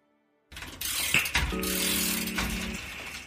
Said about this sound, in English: The ticking and whirring of a clock.